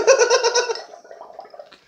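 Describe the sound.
A voice imitates a wet, bubbling gargle, blowing through the lips in a rapid burbling rhythm that starts loud and fades into softer sputtering bubbles.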